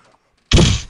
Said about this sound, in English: I kick the door in.